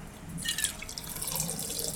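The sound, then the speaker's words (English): Coffee brewed from Cauca beans from Colombia pours steadily from a Chemex into a cup, a continuous trickling splash with a brighter, higher-pitched gurgle early on as the stream starts. “So, as always, the on-air pour.”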